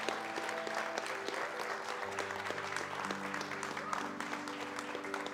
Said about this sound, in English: Will you give these four one more round of applause and thank you?